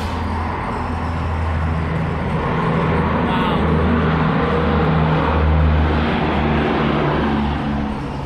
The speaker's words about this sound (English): What's this airplane that's coming in for a landing? C-130 just coming in, doing a couple touch and goes in the pattern. They probably came here from Great Falls or something. We'll hear it. See if they're doing a touch and go. Oh yeah, he's going.